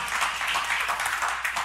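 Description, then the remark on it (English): A crowd claps steadily, a dense patter of many hands blending into continuous applause that stays even in loudness throughout. “Oh, yeah, that's something to clap about.”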